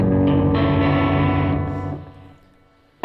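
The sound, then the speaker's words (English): An electric guitar played through an effects unit rings out loud as the guitarist plays one of his own songs: thick sustained chords washed in echo and distortion that fade away after two seconds, ending with an abrupt burst. “Trying to play one of my own songs.”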